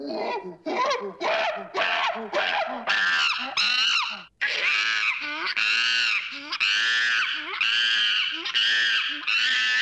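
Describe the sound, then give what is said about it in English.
A wild rhesus macaque monkey, sighted in Orange City, screeches in a loud, continuous string of harsh, high-pitched shrieks, about a dozen rapid bursts with brief breaks between them and no talking. “The monkey seen on social media has been identified as a wild rhesus macaca monkey.”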